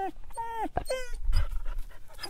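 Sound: dog panting and whimpering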